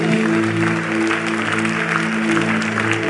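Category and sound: crowd, audience clapping hands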